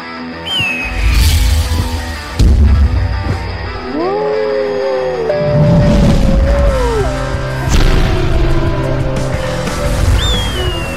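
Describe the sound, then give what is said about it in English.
A loud car crash sound effect: heavy booming impacts and crunching bursts, with sliding, screeching tones weaving between them. No one speaks. “We were in a car crash, and our dog jumped out the window, and now we're chasing after him on the beach.”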